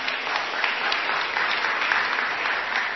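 A crowd at a Sunday church gathering applauds steadily, a dense, even wash of many hands clapping at once with no pause for the full few seconds and no voices standing out.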